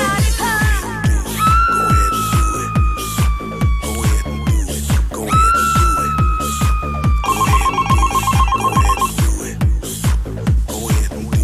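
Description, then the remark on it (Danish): A loud phone ringtone plays alone: a steady thumping beat under long gliding synth tones, ending in a rapid trilling ring that repeats for several seconds. “Der er nogen, der ringer her.”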